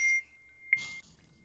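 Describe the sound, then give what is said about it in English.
A phone notification beep sounds twice: a short high electronic tone, then a longer one that opens with a bright chirp, clear against a quiet background. “Whoever doesn't have their phone, I'm fucking silent. Put it on silent right goddamn now.”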